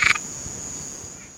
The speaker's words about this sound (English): Mate, this frog sounds like it's suffering. Who's that little guy? What's he doing down there? Is this definitely a frog? It's definitely a frog, yeah. Okay. I had a choice of three different calls for this frog.